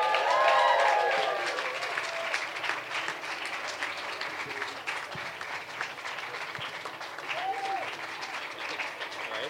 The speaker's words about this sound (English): Will you please give a big, warm women's podcast, body and soul, festival round of applause to the Taoiseach, Leo Varadkar.